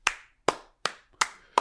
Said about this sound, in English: You get mad at me when I clap at my own advice. I do it now when it's good.